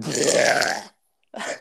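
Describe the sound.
A person's voice imitates a goat's bleat, like an Italian goat: a long, wavering, nasal bleat, then a short pause and a briefer second bleat, both fairly loud.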